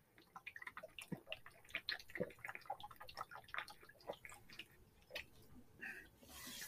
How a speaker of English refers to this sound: Gotta take a drink of water here. Got dry mouth. Take a drink if you want, if you have something to drink.